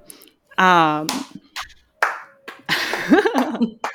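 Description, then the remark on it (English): One person claps a few sharp, irregular times, the crisp smacks mixed in with bursts of people talking. “is clapping. I love that.”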